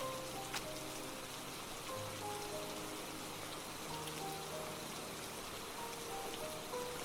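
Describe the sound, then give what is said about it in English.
Steady rain pours down in the woods as it gets dark, a continuous, even hiss of countless drops, with a few faint sustained tones drifting softly underneath; no one speaks. “Listen to the rain falling.”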